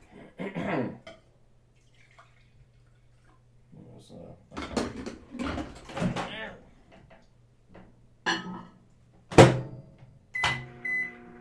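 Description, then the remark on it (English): Intermittent kitchen clatter of cups, dishes and utensils as someone gets coffee to microwave because the pot got cold, with a steady low appliance hum underneath and a short electronic beep near the end. “Let me get some coffee. Gotta microwave it because the pot get cold.”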